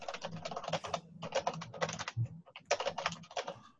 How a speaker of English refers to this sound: I'm in a coffin, hearing only the sounds of the world's loudest keyboard. Yes, only the sound of ch-ch-ch.